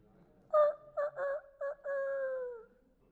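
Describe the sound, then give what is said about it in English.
A rooster crows once, a few short choppy notes rising into a long, drawn-out final call that slowly falls away, loud and clear with nothing else behind it. “Can you hear the rooster?”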